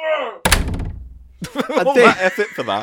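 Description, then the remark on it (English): A single heavy door slam, a door-closing sound effect, lands with a sharp thud and a low rumbling tail that fades over about a second, with voices talking just before and right after. “Why wasn't there a sound effect for door closing then?”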